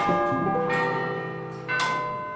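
A large clock tower bell in Prague, which chimes every hour, tolls three times, each deep, resonant strike ringing out with long overlapping metallic hum and shimmering overtones, fairly loud with no voices.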